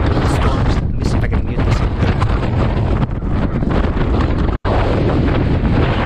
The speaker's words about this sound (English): Needless to say, it was really windy up there.